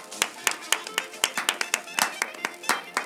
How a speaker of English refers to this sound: Clap, clap, clap, clap. Yay.